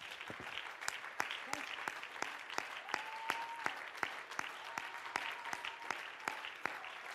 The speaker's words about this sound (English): Can we just clap our hands one more time to the Lord? Yes, Jesus, hallelujah.